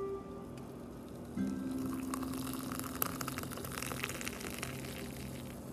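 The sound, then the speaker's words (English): Hot water is poured steadily from a small red teapot into a cup for a morning cup of Nescafe coffee, a continuous trickling gush that starts after a brief moment of low background hum and runs to the end. “Yes, in my cute red little teapot, every morning that I burn my finger on, brew my nice hot water for my delicious cup of Nescafe.”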